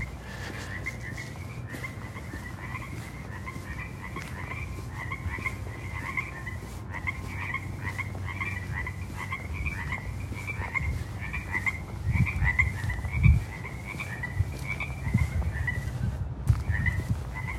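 A chorus of frogs croaks continuously, with rapid repeated calls overlapping in a steady pulsing rhythm over a low rumbling background, with no one speaking.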